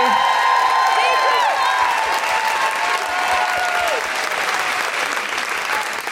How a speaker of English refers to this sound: Can I have a really huge round of applause for the amazing Miranda Kane? Thank you.